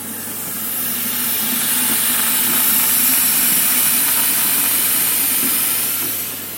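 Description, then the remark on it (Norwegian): Water pours steadily into a canister, topping up a mixture, a continuous hissing rush that swells in over the first second, holds for several seconds, then tapers off. No one speaks. “Ja, og så etterfyller vi med vann.”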